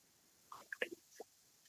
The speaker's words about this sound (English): Take a sip of water real quick. One sec.